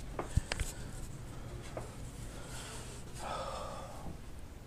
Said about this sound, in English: He's up here with me. You're a good boy, aren't ya? He's sniffing my shoes.